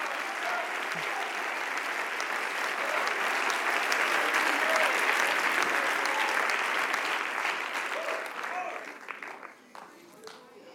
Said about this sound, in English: Clap your hands unto the Lord if you believe it.